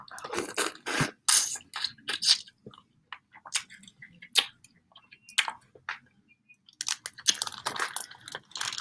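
Wet, crunchy chewing of food during an ASMR mukbang, with irregular bursts of crisp crunches and squishy bites repeating throughout, fairly loud and with no talking.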